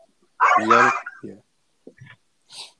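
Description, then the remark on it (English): A dog barks: one loud, drawn-out bark followed by a few shorter, quieter yips spaced apart, with no talking. “I gotta let my dog out.”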